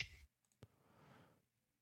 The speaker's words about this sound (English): You might hear me shuffling my cards. Sorry, everybody.